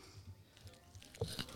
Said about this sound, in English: You just crunching really hard on the grapes.